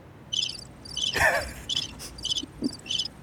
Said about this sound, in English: Crickets.